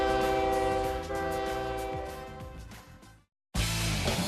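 A loud train horn blares a sustained, chord-like blast for about three seconds and fades slightly. After a brief gap of silence, the heavy rumble of a passing train takes over.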